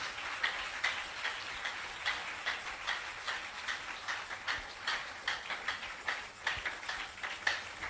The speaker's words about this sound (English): Stand to your feet. Clap your hands unto the Lord. Oh, clap these hands. Clap these hands.